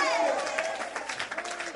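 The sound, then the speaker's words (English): An audience claps during a sermon in a steady, dense patter of many hands, with a man's voice trailing off over the first part of the applause. “Just understand, young person, you're clapping now.”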